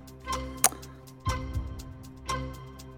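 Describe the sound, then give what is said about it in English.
A steady, fairly loud clock-style ticking pulses at about one beat per second, a 60-second countdown timer running on its own with no voices over it. “All right, let's put 60 seconds on the clock.”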